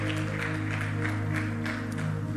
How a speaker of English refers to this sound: If you're watching this online, thank you for tuning in. Can we give our online audience a round of applause? Let's praise God for them.